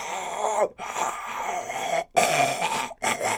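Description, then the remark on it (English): A person imitates a hoarse Louisiana Tigers coach yelling on the sideline, making gruff, dog-like barking shouts in three loud, raspy bursts with brief pauses between them. “Dude, I see that guy yelling on the sideline. I just try to think, like, what does that sound like?”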